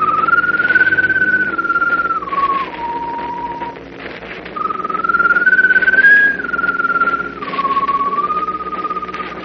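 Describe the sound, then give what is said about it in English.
A strange glowing bird perched on top of a mast whistles mournfully in two long, wavering phrases, each drifting slowly downward and fading, over a steady low droning hum. “As though echoing the doctor's pronouncement of impending doom, the strange glowing bird perched on top of the mast whistles mournfully.”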